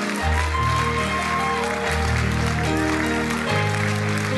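An audience claps in praise of Jesus in a dense, continuous wash of applause, mixed with loud sustained keyboard or organ chords that shift a few times underneath.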